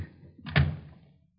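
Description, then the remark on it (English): A single solid thunk of a door being shut, a sharp impact with a low, resonant thud that fades quickly into quiet. No voices are heard. “Well, use all you like, but I think you better go back and close the door.”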